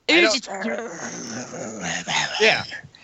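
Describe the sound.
A man imitates a dog in a scene from the show Brain Dead, where the character Red growls like a dog: rough, guttural growls in a few loud bursts across about three seconds, with a brief whine-like rise near the end.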